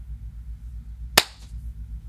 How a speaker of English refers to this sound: Okay, before we do that, let's clap, because I would love to sync it up.